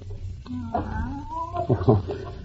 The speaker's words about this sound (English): That's just Professor Kimberly's cat.